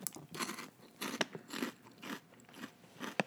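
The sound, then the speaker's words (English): Crisp crunching as someone bites into a pork crackling and chews, with a steady rhythm of loud crackly bites and a couple of sharp snaps, no talking. “I need to eat another one. Not a tomato, a pork crackling.”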